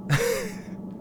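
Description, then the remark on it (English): A single sudden sneeze: a sharp, breathy burst with a brief voiced squeak in the middle that quickly fades into quiet. No one speaks. “Bless you.”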